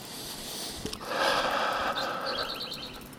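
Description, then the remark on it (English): Birds chirp and twitter outdoors on a morning, with a quick run of bright, repeated high notes near the end over a steady background hiss, no one speaking. “There's still a lot of birds going at it.”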